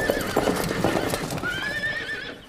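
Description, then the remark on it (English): Rapid hoofbeats clatter in a busy, overlapping rhythm as four horses gallop away, then a loud rising neigh rings out over the fading clip-clop near the end. “Over here, I have four of the fastest horses in Great Britain.”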